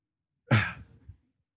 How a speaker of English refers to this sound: And I'm getting ready to sneeze, and I know it's coming. I'm trying to avoid it.